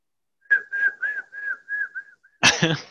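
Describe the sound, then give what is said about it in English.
Someone whistles an imitation of a seagull call: about six short, mid-pitched notes in a steady rhythm, each dipping slightly, followed by a sudden loud, breathy burst of noise. “I lost my seagull sound effect somewhere.”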